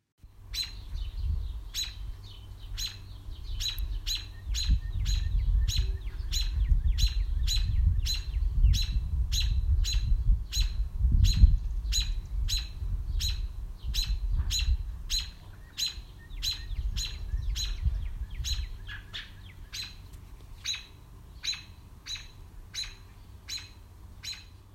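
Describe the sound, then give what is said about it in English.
Robins sing in a backyard on a Sunday morning, 1 May 2022, a steady run of quick, bright chirps repeating for the whole stretch over a low, rumbling outdoor background. “That was Robins in the Backyard, Sunday morning, the 1st of May, 2022.”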